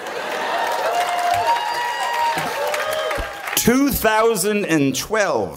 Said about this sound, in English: See, as a joke, I wrote hold for applause, and I was actually gonna read that. So you kind of killed my joke. Let's do that again. 2012, hold for applause.